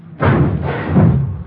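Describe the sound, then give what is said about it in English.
On a chilly day, a garage door heaves open with a heavy thud, followed by a loud, sustained rumbling roll that swells again before tapering off, with no voices. “Watch the door, Ben.”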